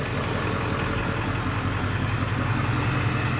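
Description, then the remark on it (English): A heavy truck engine rumbles loudly, a steady low droning roar with a broad wash of noise that holds constant throughout, with no voices. “Oh, there's going to be a loud truck here.”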